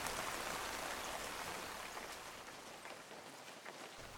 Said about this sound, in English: By the time I left the bike at the end of his drive, the rain fell harder still, and I let it pour all over me, washing away the adrenaline and Jack's mad laughter.